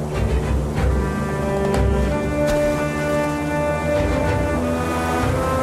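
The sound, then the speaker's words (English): A motorboat engine drones loudly and steadily as the boat speeds across water, throttle pushed and wheel turned, with a constant churning rush of spray and no voices. “I didn't know how to drive a boat, but I would learn. That piece of shit was going too slow. I pushed the throttle, turned the wheel, and sped after Soze.”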